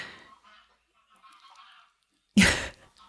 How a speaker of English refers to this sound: do you hear the geese? You do hear the geese.